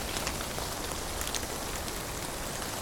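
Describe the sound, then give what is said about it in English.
Steady rain from a long-lasting storm falls continuously, a dense, even hiss with scattered drops pattering on a surface, moderately quiet and unbroken throughout, with no voices. “You sit there, and it's still raining.”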